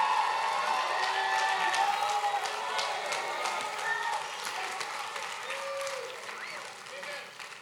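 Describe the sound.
A crowd at an evening religious meeting claps steadily and loudly while voices shout and whoop over the applause, answering a call to clap and shout; a dense, continuous wash of hand claps that slowly thins out toward the end.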